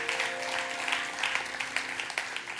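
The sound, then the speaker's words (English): A large audience at a church worship service in Las Vegas claps steadily, dense applause filling the space with sharp overlapping slaps, a faint sustained tone humming underneath. “Come on, make some noise. Clap those hands.”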